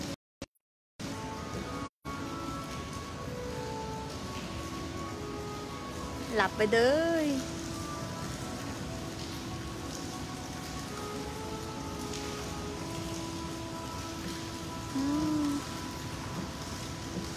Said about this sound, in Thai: โอ้โหเรามีเสียงน้ำอีกนะลูก